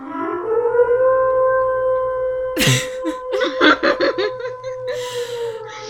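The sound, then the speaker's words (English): An air raid siren wails in a long, steady drone that rises slightly at first and holds throughout, while people burst into laughter over it midway. “That is a siren.”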